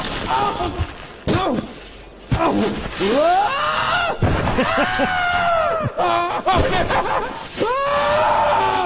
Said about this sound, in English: Screaming. I know. In stereo.